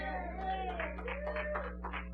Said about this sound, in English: I got three of you clapping your hand. Well, God bless the three.